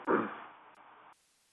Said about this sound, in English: Okay, is it a delay? You breaking up. Okay, we're going to try to see if we can fix that before we go Facebook Live.